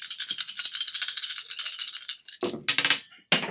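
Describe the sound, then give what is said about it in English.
Dice are rolled for an attack in a game, rattling in a steady, bright clatter for a couple of seconds, then tumbling out in a few sharper bursts of clicking before stopping. No one speaks. “Hot dice! That's only 3 successes.”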